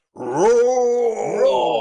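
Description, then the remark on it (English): A lion's single drawn-out, growling roar lasting under two seconds, rising in pitch at first and then holding steady and loud before it ends abruptly, with no other sounds around it. “Immediately we're roared at by a lion.”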